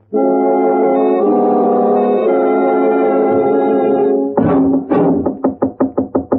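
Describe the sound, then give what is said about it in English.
A steady, droning horn-like tone holds for several seconds, then gives way to hard knocking on a door: about nine loud, sharp raps in a quick, even rhythm. No voices. “About one more knock like that, and them hinges will give up the struggle.”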